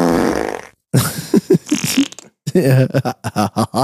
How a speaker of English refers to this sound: The fart means that it's bad.